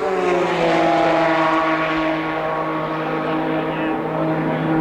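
A loud, sustained high-revving race car engine roar with strong harmonic whine, its pitch sliding slightly lower as Indy race cars speed past on the track at the 1993 Indy 500, with no clear talking.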